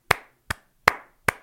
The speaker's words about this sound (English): All right, so the hot spot of the week, without a doubt, and I give it the golf clap of the week.